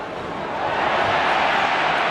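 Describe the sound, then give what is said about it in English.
A large stadium crowd yells at a free kick in a Crows match, as Rory Sloan is held and wins the free kick at half-back; a dense wash of many voices that swells slightly louder over a couple of seconds and holds there, with no single voice standing out. “You probably heard the crowd yell.”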